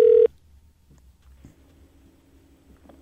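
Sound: telephone keypad dialing tones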